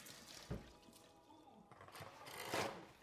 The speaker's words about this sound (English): Let me wash my hands real quick because I want to be clean while I'm cooking.